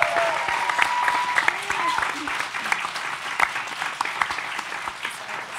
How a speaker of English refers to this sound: So all of the people from the teams, please can you give them a big round of applause as well?